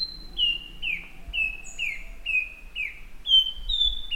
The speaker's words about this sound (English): One analysis used nearly 250 song examples of the nightingale wren, a tropical American bird widely admired for its haunting song.